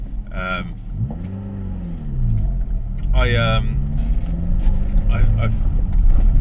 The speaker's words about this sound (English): As you can hear, I'm on the noisy part of the road. I don't know why I've started recording on the noisy part.